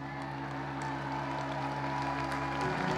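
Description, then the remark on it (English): An audience applauds steadily for three seconds, a dense wash of many hands clapping at an even level, with a low steady hum running underneath. “I'm not asking you to applaud me.”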